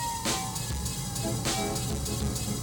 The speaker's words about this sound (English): Did everybody hear that? It's a fire engine. Hopefully everybody's okay.